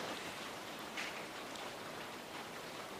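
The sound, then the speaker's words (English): Steady rain patters on a roof in a dense, even hiss that never lets up, fairly soft, with no voices or other sounds breaking through. “Can people still hear me with the rain?”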